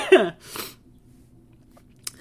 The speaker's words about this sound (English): Sorry, I'm like having a coughing fit.